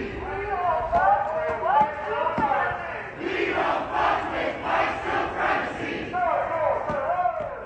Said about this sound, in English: This past weekend, I went to my first march, a Not Your Model Minority March in downtown Raleigh. I found myself yelling with the crowd, "Not your fetish, not your fantasy."